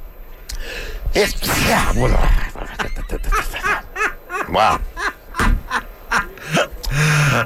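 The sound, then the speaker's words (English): A stifled, suppressed sneeze on a radio show bursts out as a short, breathy rush of noise, followed by a voice talking in choppy bursts. “You probably shouldn't be coughing right into the microphone or sneezing.”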